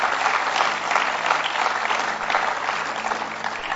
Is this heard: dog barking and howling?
no